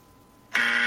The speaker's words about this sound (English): Looking for the buzzer. That's too wrong for me.